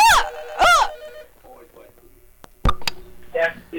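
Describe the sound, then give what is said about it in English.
Two short, loud warbling rings sound at the very start, a business telephone line ringing, followed by quieter clicks and knocks and a burst of voices near the end. “I ain't heard her heard a house phone ringing so long.”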